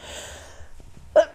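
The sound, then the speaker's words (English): A single sneeze bursts out sharply near the end, short and loud after a stretch of quiet, breathy room noise. “Bless you.”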